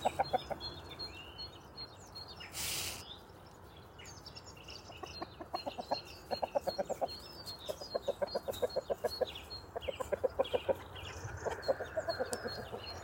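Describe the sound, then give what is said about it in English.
Chickens cluck in quick, repeated bursts, several birds pecking in the frost, with a brief rustle early on and faint birdsong chirping in the background. No one speaks. “Chickens everywhere, pecking in the frost.”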